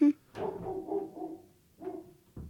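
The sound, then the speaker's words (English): A dog named Mabel barks a few times upstairs in the house as the mailman arrives, the muffled barks drawn out and fairly quiet, with short pauses between them. “I hear our dog upstairs.”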